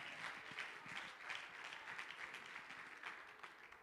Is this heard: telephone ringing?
no